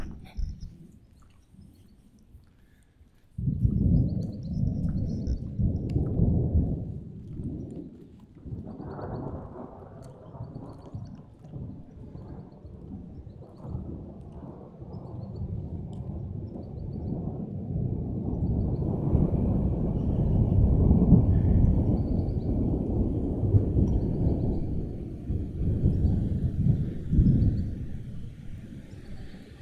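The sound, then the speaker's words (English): Rolling thunder from a thunderstorm breaks in after a few quiet seconds, then rumbles on continuously with deep, swelling waves that grow loudest later before easing slightly, with no voices. “There's a very sweet thunderstorm going on here.”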